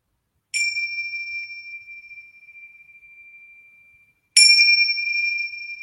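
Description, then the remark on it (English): Two clear meditation bell strikes, several seconds apart, each a bright ring with a long, pure sustained tone slowly fading into silence. “So the bells will signify the beginning of our practice.”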